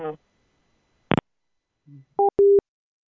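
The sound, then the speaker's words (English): A telephone ringback tone from an outgoing cell phone call to the front desk of an America's Best Value Inn motel: two short, steady electronic tone bursts near the end, preceded by a sharp click and brief fragments of a voice. “I'm calling the number right now.”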